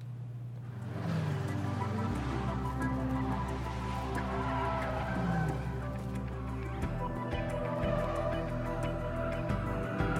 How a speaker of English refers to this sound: Look at her drift in that car.